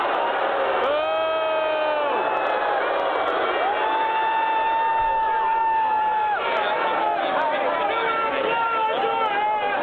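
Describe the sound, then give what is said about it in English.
A crowd cheers and applauds loudly and continuously as a police officer takes a man out, with many voices shouting and whooping in long, rising and falling calls that overlap throughout the whole stretch. “And then the cop comes and takes him out, and everybody starts applauding.”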